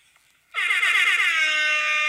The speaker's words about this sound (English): Let me play my air horn again, please.